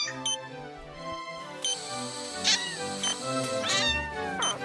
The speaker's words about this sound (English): The voice of the kitten had the magical power needed to bring Jennifer out of her unconsciousness.